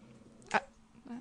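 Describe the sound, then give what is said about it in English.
A dog lets out a single short, sharp vocalization, like a quick bark or yip, followed by a faint murmur of voices. “I know the dog doesn't agree either.”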